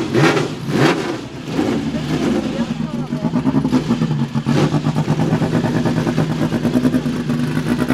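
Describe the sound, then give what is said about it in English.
An expensive twin-turbocharged car engine revs steadily while driving on a narrow road, its loud droning hum rising and holding throughout, with indistinct talk underneath and a few brief thumps early on. “We start with a big turbo, and this one has two turbocharged. Right. Anyway, right. You know the road is very narrow. Be careful, because I drive an expensive car, but I take a lot of pleasure to drive it.”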